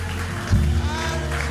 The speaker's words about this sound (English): Yeah, stomp, shout, cheer.